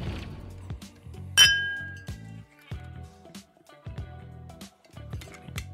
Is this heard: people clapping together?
no